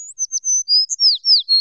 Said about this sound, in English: And so little birds sang in praise and wonder.